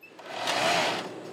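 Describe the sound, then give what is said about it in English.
A sewing machine at Motorport USA in Escondido sews cut Kevlar mesh pieces into made-to-order protective pants for riders, running in one steady burst of rapid mechanical whirring and stitching, building to its loudest midway before easing off slightly, with no voices over it. “And then each piece is carefully sewn into a pair of protective pants that are made to order.”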